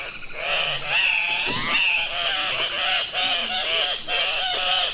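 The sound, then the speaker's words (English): Andean cock-of-the-rock calls: loud, harsh, nasal squawks repeated in quick, overlapping bursts, like several birds honking and screeching together with no talking. “True to form with their bold plumage, the Andean Cock-of-the-Rock also takes part in, well, cocky mating rituals.”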